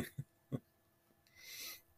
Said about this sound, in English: Oh, I can't stop yawning all of a sudden. Start doing these and reading is making me tired.